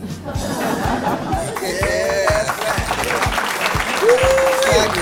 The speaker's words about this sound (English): We know you need applause for that one.